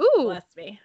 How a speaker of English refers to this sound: bless you I'm allergic to this guy. I know, he's such a dick. Making me sneeze.